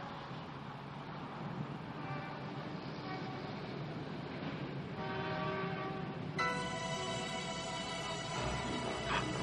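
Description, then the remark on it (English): A steady rumble of passing rail cars with rhythmic clatter, joined by high metallic squealing and tonal screeching in the second half, continuous and fairly loud throughout. “I want you to close your eyes while you hear the cars.”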